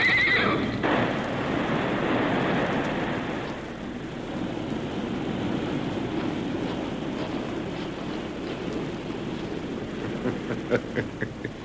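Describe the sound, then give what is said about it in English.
Galloping horses trip on a rope stretched tightly across their path on a steep riverbank: a loud, shrill whinny at the start, followed by a steady rush of heavy galloping hoofbeats and scuffling, with no voices. “Before they knew it, the galloping horses tripped on the rope.”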